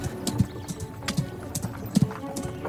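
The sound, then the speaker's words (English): Horse hooves clop along at a steady walking pace, a series of hollow thuds repeating in an uneven rhythm, moderately loud with no voices. “If we're just walking, yeah, wildfire.”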